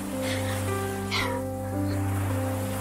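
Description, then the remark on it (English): A steady roar of surf from a raging sea crashing against jagged rocks below washes continuously, with a louder surge about midway, while sustained low musical tones hum underneath. No one speaks. “It makes such a thunderous sound against the jagged rocks below. The crashing of the waves and the feel of the wind.”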